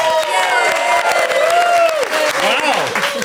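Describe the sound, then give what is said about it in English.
A loud crowd bursts into sustained applause for Strictly Come Dancing legends Aljaž and Janette, dense clapping layered with high cheers and whoops that rise and swoop, filling the whole stretch without a break. “Can we have a round of applause, please, for Strictly Legends, Aljaž and Janette?”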